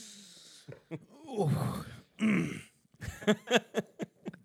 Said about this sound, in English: Just clear my throat.